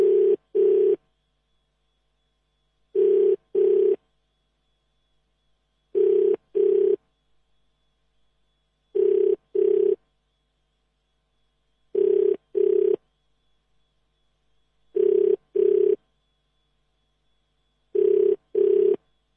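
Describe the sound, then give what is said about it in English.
An outgoing phone call rings unanswered: a steady double-burst ringback tone repeats seven times at even intervals, with silence between the pairs and no voice ever picking up. “So Rani is not picking up her phone at all.”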